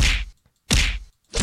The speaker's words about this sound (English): You can punch him. Ow! Oh. Ow!